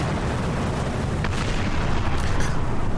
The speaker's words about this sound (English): Truly, a couple of things are about to happen because you hear boom, boom, two explosions go off.